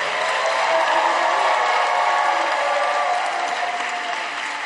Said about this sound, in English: Clap for them as they go back to their seats. Your clapping is weak.